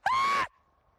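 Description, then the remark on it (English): A single short, piercing scream, purported to be a Sasquatch vocalization, loud, with a steady high pitch lasting under half a second before cutting off into a faint fading echo. “One of the more common vocalizations is often described as a high-pitched scream, like a woman being murdered in the woods.”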